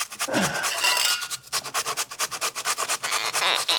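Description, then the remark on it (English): Rapid, rhythmic rasping strokes of food being grated on a kitchen shredder, fairly loud, starting with a longer scrape then settling into quick repeated back-and-forth scratches. No voices. “Suffice to say, knuckles on a shredder.”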